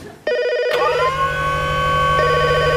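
A telephone rings with a rapid warbling electronic trill that starts abruptly, joined by a sharp click and a steady bright tone that hums beneath the ringing throughout.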